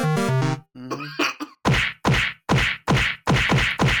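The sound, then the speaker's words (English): Short vocal grunts give way to a rapid, evenly spaced series of loud cartoonish whacks and slaps as a character kicks cops coming for him, each landing with a sharp, heavy thud. “That's me kicking all the cops that come for me.”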